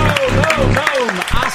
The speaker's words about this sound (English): A round of applause for receiving text like that and not... Like, there was not one response.